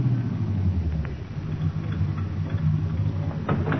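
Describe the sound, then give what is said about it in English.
A taxi's car engine idles in a steady, low rumble with a constant hum and faint ticking, running unbroken for a few seconds with no voices. “Hey, taxi! Taxi!”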